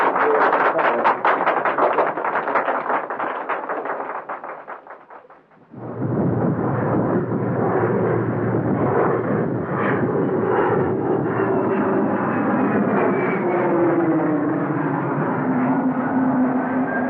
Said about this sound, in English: But that's the plane for Tanzania, standing on the tarmac now.